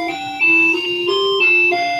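A clock in a house chimes two o'clock with a short melody of bright, ringing bell tones that step between pitches in an even rhythm, clear and fairly loud with no talking.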